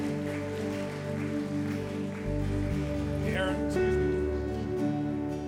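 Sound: audience applauding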